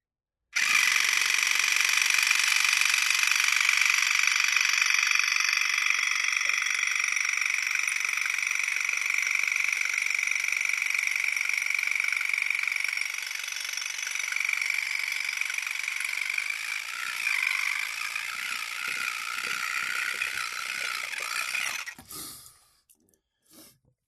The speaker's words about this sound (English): It sounds exactly like an electric toothbrush. I think I might need some new batteries in it. Seems to be losing its charge a little bit